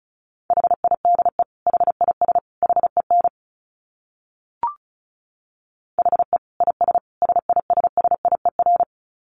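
Fast Morse code at about 35 words per minute: a single steady, high-pitched beep keyed in rapid dits and dahs, in two runs separated by a pause broken only by a faint click.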